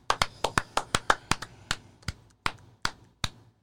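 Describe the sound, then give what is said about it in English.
A single person claps their hands about fifteen times, sharp and crisp, quick and steady at first, then slowing into more widely spaced claps toward the end. No voices. “Just getting a nice breeze from my own clap on my face.”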